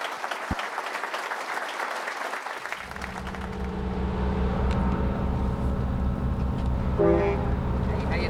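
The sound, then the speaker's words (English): Crowd clapping and chatter give way to the heavy engine of Senator McCain's campaign bus, the Straight Talk Express, rumbling up as it pulls away from Durham for Dover, New Hampshire, followed near the end by a single short, loud horn toot. “After Durham, Senator McCain set off for Dover, New Hampshire in his bus, the Straight Talk Express.”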